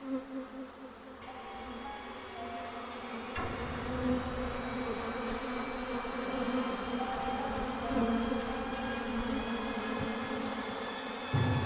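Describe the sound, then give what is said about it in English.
A dense swarm of bees covering the walls and ceiling of a dark, windowless office room drones continuously, a thick layered buzz of many wings that swells slightly after a few seconds and holds steady throughout, with no voices. “And I froze in place when I quickly realized what the sound was. Bees.”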